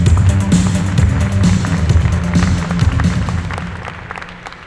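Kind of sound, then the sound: crowd, audience applause and cheering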